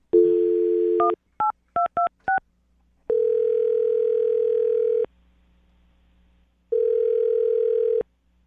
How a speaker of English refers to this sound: All right, I'm going to dial the phone number, okay? Okay, let's do this. All right, here we go.